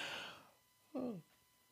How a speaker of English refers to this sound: I'm yawning as I do the podcast.